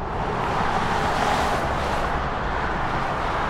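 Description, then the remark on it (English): A loud, steady roar of heavy highway truck traffic rushing past below an I-40 overpass in Durham, a continuous wash of tire and engine noise with no distinct gaps and no voices. “After talking with David, I went out to an I-40 overpass in Durham, and I watched the trucks go by for a while.”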